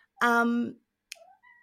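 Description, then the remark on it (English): A cat, Sergeant Bilko, gives one loud, drawn-out meow, followed by a short pause and a few faint, brief tones. “Sergeant Bilko the Cat is here.”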